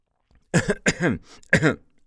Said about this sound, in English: No, not cough. I'm coughing. I am coughing. It sounds like cough, but it's pronounced cuff.